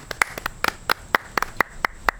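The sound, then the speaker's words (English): A short burst of sparse clapping from a live audience in a gazebo in Oaks Park: about a dozen sharp, crisp claps in a slightly uneven rhythm, more like a few people than a full crowd, with no voices. “Filmed in front of a live audience, as you can tell by the claps.”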